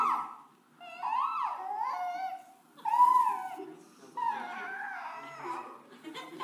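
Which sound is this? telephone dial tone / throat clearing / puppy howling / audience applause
puppy howling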